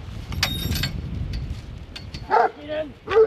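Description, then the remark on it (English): Three sharp farm working dog barks ring out near the end, loud, after a stretch of low outdoor rumble and faint yips. The dogs are in a paddock near a farmyard: George, a 5-year-old Huntaway, and Ro, a heading pup of about 11 months. “are in a paddock near the farmyard with their dogs.”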